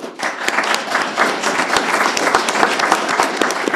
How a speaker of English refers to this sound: Clap to that, yeah.